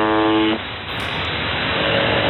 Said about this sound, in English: And I found a station on YouTube that just broadcasts it straight live. Kidding. So we're going to go to exactly what you're hearing on the buzzer station live right now. Here it is. This is live from the buzzer.